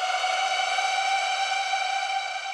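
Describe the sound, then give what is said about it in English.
A sustained siren-like synth tone added to an electronic music track holds steady and bright with rich harmonics, droning continuously at an even loudness for the whole stretch, with no voices. “So yeah, I also added in these siren-y sounds.”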